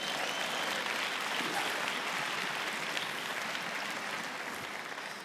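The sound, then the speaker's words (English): Sustained audience applause, a dense wash of many hands clapping steadily for about five seconds, loud and even before easing slightly at the end; the applause is for the man who plays the machine. “Would you give him a good round of applause, ladies and gentlemen?”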